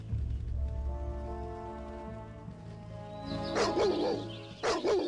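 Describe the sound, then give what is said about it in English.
A steady, droning musical tone fills the first few seconds, then a pack of wild dogs charges, breaking into loud, overlapping barks and snarls in two rapid bursts. “It's a pack of wild dogs, and they charge immediately.”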